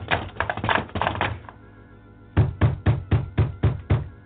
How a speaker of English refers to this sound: He tried to open the great wooden monastery door.